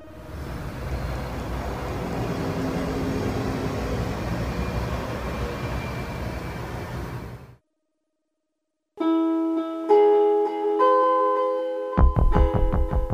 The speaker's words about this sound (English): Now, any second here, where we are, I believe there should be a bus coming by right about now. And that is the bus that I would have caught here.